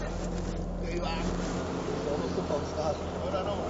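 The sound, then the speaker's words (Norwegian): A vehicle engine runs steadily as it is driven over to a camper camp beside a harness racing track, a low droning rumble with a constant hum that holds throughout without any clear revving or pauses. “Knut kjører en tur bort for å vise hestekrefter”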